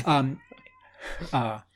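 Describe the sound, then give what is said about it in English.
A cat meows twice, two short, clear calls separated by a brief pause filled with faint rustling. “Is there's my cat.”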